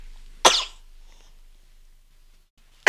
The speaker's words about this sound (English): He's asleep and he's sneezing.